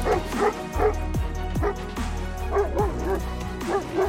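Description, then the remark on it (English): A dog barks rapidly and repeatedly at a bear, about eight or nine sharp yipping barks in quick succession, fairly loud, with a low rumble underneath. “Then our dog raced outside.”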